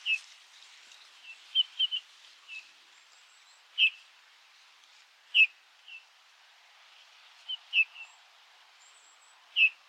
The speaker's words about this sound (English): But when you can hear, I'm getting a little bit better at my bird calls. I'm starting to tune in and hearing that kind of squeaky sound they make.